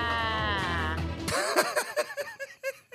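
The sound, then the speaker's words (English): A woman lets out a sustained, quavering sheep-like bleat for over a second, then breaks into a quick series of short, choppy laugh-like bursts, fairly loud. “She sounded like a fucking sheep.”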